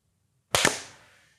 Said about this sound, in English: We good? We want to do a clap? Sure. Yeah, we should do a clap. Y'all should clap.